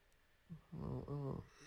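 A single big human yawn, close and loud: a short breathy intake, then a drawn-out voiced groan that bends in pitch before trailing off. No talking.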